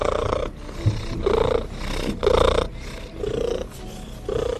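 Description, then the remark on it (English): A cat's solicitation purr rumbles in steady, rhythmic pulses, each carrying a thin, high-pitched cry woven through it; fairly loud, with no talking. “And this month, there was a high frequency noise about the frequency of both the cat cry and the baby cry.”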